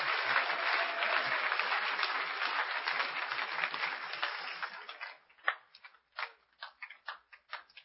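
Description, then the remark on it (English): A crowd at a camp applauds for Jesus with dense, steady clapping for about five seconds, then it thins out into a handful of scattered, separate claps that fade away. “Clap for Jesus.”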